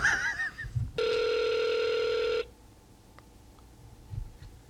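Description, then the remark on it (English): A single steady, buzzing ringback tone sounds for about a second and a half after some brief warbling line noises, followed by quiet hiss as the phone line waits, during a call to a business in Glen Rose, Texas. “Man, by the time I clicked dial, I forgot the type of place I called.”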